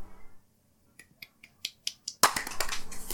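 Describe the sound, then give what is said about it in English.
A single loud, sharp hand clap comes after a quick run of six light, snappy clicks, followed by a rough rustling noise. No one speaks. “Tough clap.”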